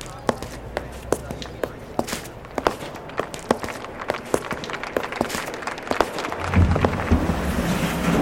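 Sharp high-heel clicks of a mother and daughter climbing the steps of a grand courthouse, striking hard steps in a steady, brisk rhythm of roughly two per second, each crisp and distinct, with a low rumble rising underneath toward the end.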